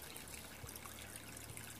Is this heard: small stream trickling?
yes